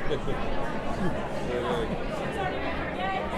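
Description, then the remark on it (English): Dense, steady crowd chatter at a live venue fills the whole clip, many overlapping voices blending into a continuous murmur with no single speaker standing out. “You're asking me to do math in front of this crowd?”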